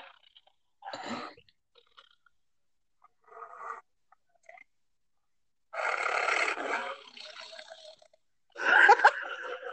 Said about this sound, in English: Do you hear that? What is that? A tiger growling.